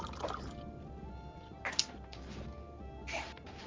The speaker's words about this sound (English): As you look around, you notice that your glass has suddenly been refilled. In fact, each of you notice the unmistakable sound of water being poured.